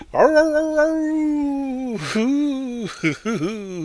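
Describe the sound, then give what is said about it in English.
A person imitates a long, wavering dog howl, pretending to be a ghost dog, the pitch sliding and quavering in a drawn-out ghostly wail with a couple of dips and breaths near the end. “Ooh, I'm the ghost dog here to haunt you.”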